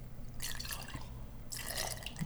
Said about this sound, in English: We're going to pour some of this and taste it. It's sort of the champagne, as it were, yes. Partly because the jar is full. And I've got to make room for more bourbon.